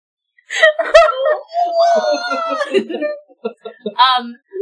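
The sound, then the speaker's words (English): A voice imitates whale calls with long, wavering moans that slide in pitch, broken up by short yelps and a final rising wail. “Screaming in whale speak the whole time.”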